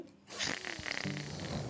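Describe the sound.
A person does a loud, exaggerated imitation of a granny snoring, a single long rasping snore with a throaty, nasal rattle.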